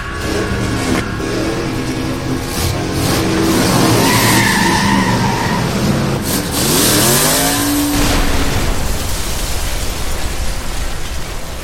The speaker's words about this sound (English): But apparently, thank God, Carface had some gas left in the tank. In demonic hot rod mode, he smashed right through the doors, sending them spinning into the outer darkness.